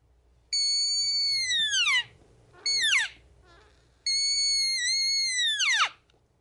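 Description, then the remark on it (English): A red deer hind call sounds three times: a long, nasal, whining bleat, a short yelp, then another long bleat, each sliding downward in pitch at its end. The calls are loud, with no talking. “Okay, rip out a hind call.”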